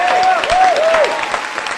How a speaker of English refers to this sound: Let's give him a round of applause for his.